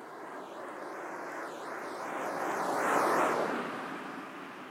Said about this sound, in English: Yay, we even have cars in the Swiss countryside, far from everywhere. We have multiple cars in a row, no less. Here comes the second one.